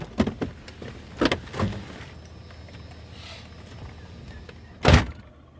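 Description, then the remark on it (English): A truck door opens with a few clicks and thumps as the speaker gets out to pee outside the truck, followed by quiet rustling and then a loud, sharp slam near the end, with no talking. “I'm going to go pee outside my truck because I can do whatever I want, and I'll be right back.”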